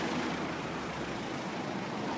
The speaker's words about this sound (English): Now, this is a busy spot because all the buses are passing here. So I'll try to cross this road here, this busy road, and get rid of the noisy traffic.